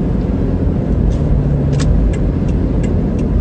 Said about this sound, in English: This car is trying to get in. That's the car that's with the bus. California plates.